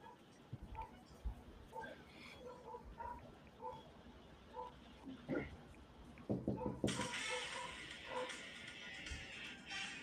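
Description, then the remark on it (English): A dog across the yard barks repeatedly at a person, short sharp yaps, with a burst of hissing background noise partway through. “Yeah, there's a dog across the yard barking at him right now.”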